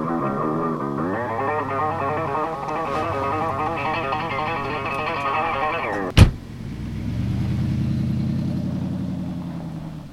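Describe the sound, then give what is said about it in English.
A car driven by chef Alice Waters slows on a gravel road, stopping in the middle of it for a hitchhiker, with a steady, whining engine tone, ends with a sharp clunk, then settles into a low idling rumble. No one speaks. “She stops right in the middle of the gravel road.”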